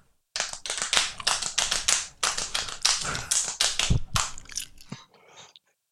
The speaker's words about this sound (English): We all just slapped our bellies. I'm sure you could hear it.